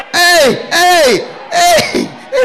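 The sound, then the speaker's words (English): A group of people shouting to guide a man walking with his eyes closed in a church: three loud, drawn-out calls in quick succession, each starting high and sliding down in pitch, with brief pauses between them. “Even that is our shouting that's informing him.”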